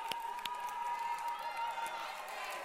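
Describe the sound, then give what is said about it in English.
An audience claps and cheers in a steady, dense wash of sound, with sharper individual claps and crowd voices mixed in. The noise holds at an even level throughout. “Yes, give them a round of applause.”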